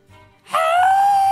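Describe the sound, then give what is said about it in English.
A person lets out a loud, sustained, strained scream that starts abruptly after a brief quiet moment and holds steady to the end, a voice performing a character's cry in a dice-based tabletop game as the character rears back. “He's still screaming, and he's going to rear back.”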